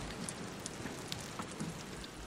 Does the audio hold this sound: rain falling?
yes